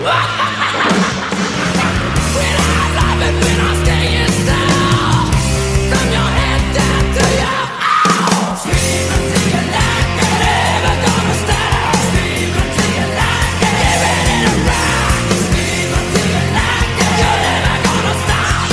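A loud, dense heavy metal song from the Ghoulies 2 film soundtrack, with driving distorted guitars and pounding drums, topped by harsh screamed vocals; the band drops out for a split second midway before crashing back in.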